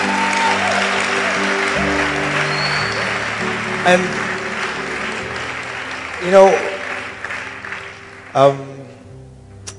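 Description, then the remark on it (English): Steady applause from a crowd fills the whole stretch, a dense wash of clapping with a few louder bursts and sustained tones underneath, while a voice speaks briefly over it. “Your clapping is not...”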